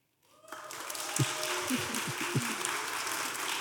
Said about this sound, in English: Okay, I want to gauge what the audience thinks the answer is. So we're going to go, you're going to vote by applause. Mm-hmm. So who thinks it was 250?